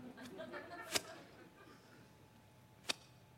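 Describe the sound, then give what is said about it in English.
A voice imitates an arrow being shot, with a buzzy mouth sound ending in a sharp snap, followed by a quieter stretch and a second crisp crack near the end. “Universal sound for an arrow getting flinged.”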